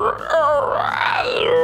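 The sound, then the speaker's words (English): A voice imitates the shriek of Mama Crab, a monster crab, a strained, wavering screech that rises and bends in pitch, sustained loudly for over a second with raspy, groan-like texture. “Mama Crab shrieks again.”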